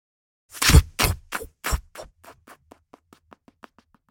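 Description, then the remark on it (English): Swinging kitchen doors flap back and forth, a loud thump followed by a string of quicker, fainter knocks that fade to light taps as the doors settle. “Swinging kitchen doors.”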